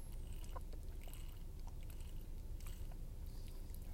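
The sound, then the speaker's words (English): Someone takes quiet sips of water, with soft wet mouth clicks and swallowing sounds scattered over a low steady background hum; no one speaks. “So I'm just going to get a sip of water.”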